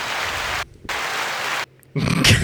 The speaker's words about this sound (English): Right, turn up the applause, you get the idea.